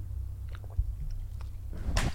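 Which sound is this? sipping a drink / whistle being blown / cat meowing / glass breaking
sipping a drink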